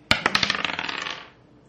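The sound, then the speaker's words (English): Dice clatter across a hard table in a quick burst of sharp clicks and rattles, bouncing rapidly and settling after about a second, with no voices over the sound. The dice are rolled for a second javelin attack in a game. “And then I will roll my second javelin attack.”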